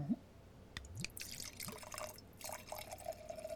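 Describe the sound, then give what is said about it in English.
Banryu sake splashes and trickles into a glass in short, uneven bursts, with small drips and bright glassy clinks scattered through a few seconds of pouring. “Let me get this in my glass.”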